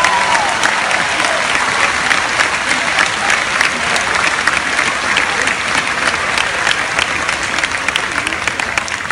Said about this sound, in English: And thanks to our teachers, we have all the tools we need to succeed in this next chapter of our lives. And they all deserve a big round of applause.